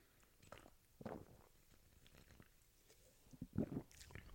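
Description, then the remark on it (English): Someone takes sips from a Ghost Blue Raspberry energy drink, with a few soft wet slurping and swallowing sounds spread out, ending in a louder gulp near the end. No one speaks. “Hold on, let me take a sip of my Ghost sponsor today, Ghost Blue Raspberry.”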